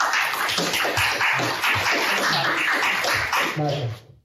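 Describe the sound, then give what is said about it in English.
An audience breaks into applause welcoming a speaker being introduced, dense overlapping clapping that holds steady for about four seconds before quickly dying away, with a brief voice surfacing near the end. “If you have a warm round of applause.”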